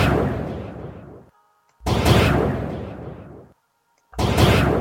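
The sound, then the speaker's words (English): Three loud, booming gunshots ring out one after another, each blast rumbling and fading over a second or so before a short silence, with no voices present. “It sounds like a gunshot going into the wounds.”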